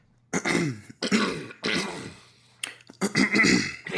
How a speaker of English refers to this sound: So we're going to get it all out right now. This is what we're calling the throat clearing segment.